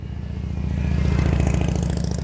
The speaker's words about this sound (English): if you heard that motorcycle just drive by me. You know, some dickhead jackass, probably on his way to, yeah, I probably shouldn't say that.